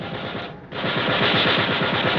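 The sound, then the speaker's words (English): A ship's gun firing at an approaching target about 1,500 yards away, a rapid, steady stream of loud bursts, with one brief gap near the start before the fire resumes and continues without a break. “Get on that gun, Mr. Hayes. When you see him, fire.”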